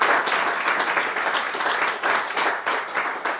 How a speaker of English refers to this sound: Give them a big round of applause for letting us do this here.